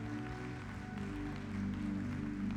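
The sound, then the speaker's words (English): An audience claps steadily for a few seconds for people attending for the first time, the dense patter of many hands spread over sustained low musical tones, like an organ or keyboard holding chords underneath. “So can we just give a hand clap for those people who came here for the first time today?”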